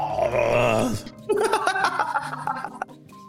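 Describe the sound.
A voice mimics someone sipping and gargling wine, making a wet, bubbling throaty rattle in two bursts split by a short pause, the second choppier and more broken up, with no words spoken.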